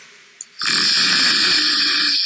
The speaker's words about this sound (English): So it goes like all different snores. Oh, that's another one. Here it comes.